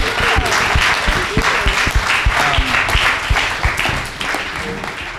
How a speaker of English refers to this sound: And we're all gonna clap.